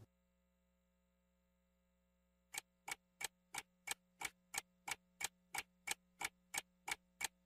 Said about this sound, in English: One, two, you hear the clock ticking, tick, tock, you about to stop living, tick, tock